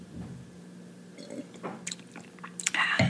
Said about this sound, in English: Excuse me, I need a sip.